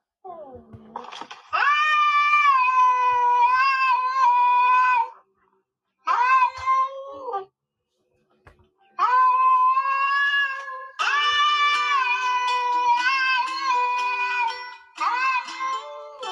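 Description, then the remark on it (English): A pet cat caterwauls loudly, long wavering yowls and drawn-out meows in several sustained bursts separated by brief pauses, with no talking. “But, yeah, this is actually my pet cat.”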